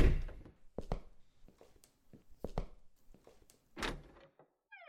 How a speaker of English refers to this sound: He opens the door, revealing a shirtless man.